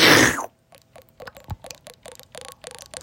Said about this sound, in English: Do you guys want to hear me drink water? Here's the water in question. It goes like this.